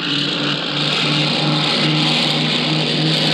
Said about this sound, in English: That's a C-54 roaring into the dawn, recorded on the scene in Denmark.